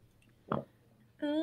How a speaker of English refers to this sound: I have the fucking hiccups. This is the worst.